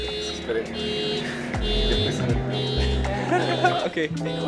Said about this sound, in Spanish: Esperamos un poco a que pasara el ruido, pero no. La alarma de ese carro seguía sonando. Así que obviamente nos movimos del lugar e intentamos empezar de nuevo.